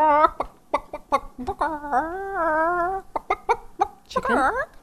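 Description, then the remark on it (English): A person imitates a clucking chicken, with quick choppy clucks that stretch into a drawn-out warbling bawk, then more rapid clucks and a rising squawk at the end. “my little chicken sound effect, it's the lead-in for a Cathi story”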